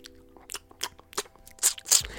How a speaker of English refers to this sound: Put in the soundtrack of a donkey eating figs.